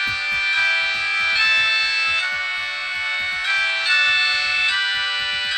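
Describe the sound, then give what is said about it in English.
The ringtone of a collectible royal wedding Alcatel mobile phone plays a bright, steady electronic melody, its tones shifting every second or so, over a low, rapid ticking beat. No one speaks. “The phone has a picture of the couple as a screensaver and this ringtone.”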